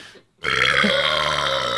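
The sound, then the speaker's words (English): A single long, loud burp erupts after a brief silence, a sustained raspy croak that holds steady for over a second. “Oh, the screaming and belching thing.”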